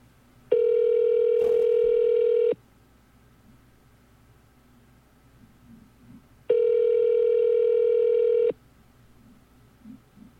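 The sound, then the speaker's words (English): A telephone ringback tone rings twice, each steady buzzing burst lasting about two seconds with a long quiet gap between, heard over a phone line while waiting for someone at a place called Critters to answer. “They take a long time to answer the phone at this place.”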